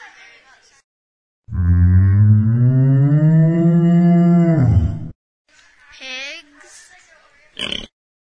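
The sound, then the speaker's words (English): A cow in the farmland of the Central Valley lets out one long, loud, drawn-out moo lasting several seconds, followed by a couple of shorter, quieter animal calls. “There's lots of animals like cows.”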